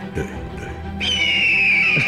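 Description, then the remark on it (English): A shrill, piercing bird call like an eagle's screech rings out loudly, held for about a second and gliding slightly downward in pitch, following a short stretch of lower, busier sound. “The parrot. It's an eagle. A parrot.”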